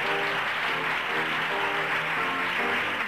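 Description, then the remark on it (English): A small gathered audience claps steadily and densely at the end of a reading of the musical Carrie, as the cast take a bow and their names are shouted out. Cheering and whooping voices mix into the applause, holding at an even, fairly loud level throughout. “At the end of the reading, there is rapturous applause.”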